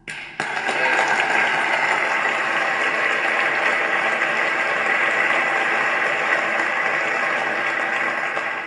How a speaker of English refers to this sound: And you know what? That right there in real time is what it's all about, because if that's the thing that's gonna get the loudest clap so far from this conversation, that's what we need to be focusing on.